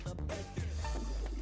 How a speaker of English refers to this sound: And a pig just came out of the bathroom with a toilet flush.